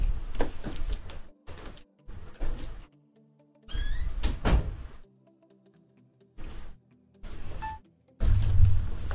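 A door is handled several times in short bursts of rattling and thudding, with a brief squeak partway through and quiet pauses between, moderately loud, with no voices.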